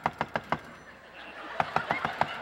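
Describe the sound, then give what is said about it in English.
Two quick bursts of knocking on a door, four sharp raps followed after a pause by about six more, clear with no voices. “Hey, sounds like somebody's at the door.”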